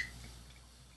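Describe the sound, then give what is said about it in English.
A brief, quiet pour of beer into a glass, a soft steady trickle with faint fizzing and no talking, lasting about a second. “You pour your own. I don't know how much you want. I don't want a ton.”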